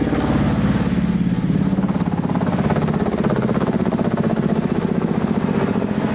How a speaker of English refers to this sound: The 101st were loaded once again onto 66 Black Hawk helicopters, which flew little more than 10 feet above the desert at 165 miles per hour.